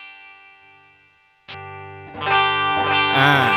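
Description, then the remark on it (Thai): A plain, normal clean electric guitar tone without reverb rings through an amp: a sustained chord fades out, then a sharp strum leads into several more plucked notes that grow fuller and louder. “เอาแบบคลีนก่อนเล่นสลับคลีนกับ อันนี้คือเสียงคลีนธรรมดา เสียงปกติ”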